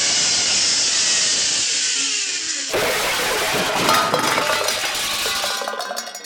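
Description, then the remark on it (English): A zipline bowling alley gives a steady high whirring rush that ends abruptly in a loud metallic crash as tin can bowling pins are knocked down, followed by several seconds of the cans clanking and rattling as they tumble and roll to a stop. “I've got some pins to knock down.”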